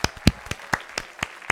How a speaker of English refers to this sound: You're supposed to clap too